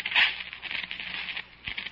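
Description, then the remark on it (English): Steady rain patters down in a continuous hiss with small crackling drops, moderately loud, with no voices. “And in the light from the match before it fizzled out in the rain”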